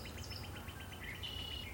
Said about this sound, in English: But they're close. We can hear them chirp, chirp, chirping away.